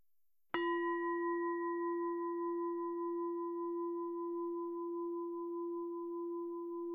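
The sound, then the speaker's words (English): A meditation bell is struck once at the close of a guided meditation and rings out with a clear, mellow tone, its steady overtones humming and slowly fading over several seconds with no voices. “And in a few moments, I'm going to ring the bells, and I invite you to gently bring yourself back to the room and open your eyes.”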